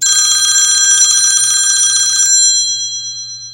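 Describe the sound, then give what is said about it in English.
A loud, continuous ringing bell with a rapid metallic rattle, like an old telephone, ringing steadily for about two seconds and then fading out as the tone lingers. “And just like that, the phone rang.”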